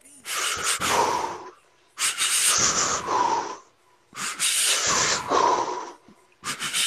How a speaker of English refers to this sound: Those just sound like you're about to bust a big-ass nut and you're trying to hold this shit in, yo. You got me weak as fuck over here, bro. Yo, your Lamaze breathing would be good on a track, for real. That would sound fire on some beat.